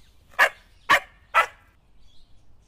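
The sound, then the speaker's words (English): A dog, Gunda in a children's story, barks three times in quick, evenly spaced succession, each bark loud and sharp, followed by quiet. “Until Gunda starts barking, that is.”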